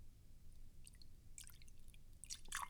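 A cherry-scented drink is poured again into a glass, heard as quiet, intermittent splashing and trickling that grows busier toward the end, with a low background rumble and no talking.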